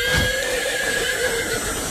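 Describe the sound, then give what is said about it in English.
A horse neighs in a long, high, drawn-out whinny that holds steady for a couple of seconds, loud, with no talking. “Let's hear your best neighing.”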